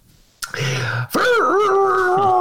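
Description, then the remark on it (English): A harmonica plays two loud, reedy notes: a short one, a brief gap, then a longer wavering tone that bends and slides in pitch, sounding like a moaning wail. “Hey, let's hear that harmonica again.”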